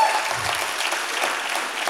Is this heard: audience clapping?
yes